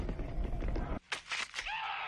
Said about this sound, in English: There's a horrible scream. Oh, no. Hooks have come out and are piercing every corner of his skin and pulling him down into another world. He's in a lot of pain.